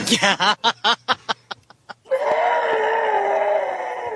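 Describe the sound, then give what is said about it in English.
A voice imitates the pained scream of someone splashed with degreaser: a few short, choppy vocal bursts, then a loud, sustained, strained shriek that holds steady for about two seconds, unaccompanied. “And he screams, and his what's that scream sound like”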